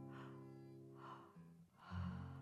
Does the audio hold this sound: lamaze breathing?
yes